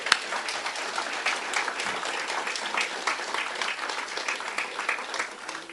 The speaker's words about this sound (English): Give Ben a clap, family.